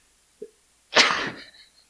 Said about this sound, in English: That was spicy. That was just a comedy of errors because it tickled my throat my nose just enough that I sneezed, and then some of the dust like went up my nose.